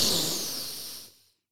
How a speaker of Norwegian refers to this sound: Altså, tenk på hvis du mediterer da. Pust inn.